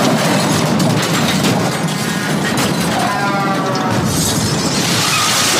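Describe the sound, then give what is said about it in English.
Loud, sustained crunching of chips being chewed, a dense crackly noise that keeps going for several seconds with no voices over it. “This is the biggest crunch that I could find in all my searching for crunches.”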